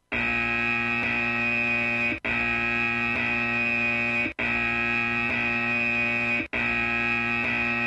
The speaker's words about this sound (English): Then there's a buzzer when people say things that are wrong. Then there's a repeated buzzer for, like, multiple offenders.